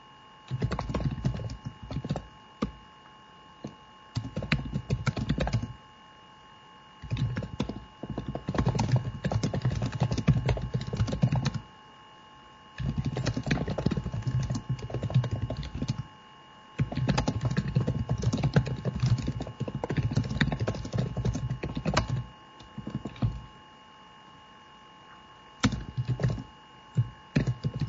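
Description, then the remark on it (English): Rapid clicking of keys on a computer keyboard, typed in bursts of several seconds separated by short pauses, fairly clear, with no voices. “That's why you probably don't do it on a live podcast, but it's Patreon only, and our patrons will understand that we have much important typing to do.”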